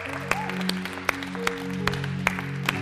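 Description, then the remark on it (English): Group applause given as a clap offering for the giftings present, heard as distinct, fairly regular claps ringing out every half second or so over a steady, sustained musical drone underneath. “Can we just do a clap offering for all the giftings here?”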